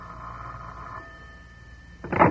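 A telephone bell rings, a steady buzzing trill lasting about a second, then a pause before a louder, brighter burst of ringing begins.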